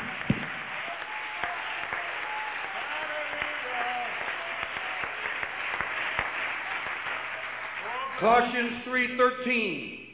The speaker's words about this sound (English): Why don't we just give the Lord a hand clap of praise here today?